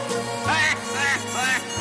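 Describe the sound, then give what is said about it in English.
Three nasal duck quacks in a steady rhythm, each about half a second long, fairly loud over a sustained low musical drone, quacking like the Batman villain the Penguin. “He's the Penguin. Quack, quack, quack.”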